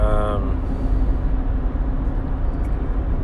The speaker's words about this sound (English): A car just drove by that reminded me of something weird.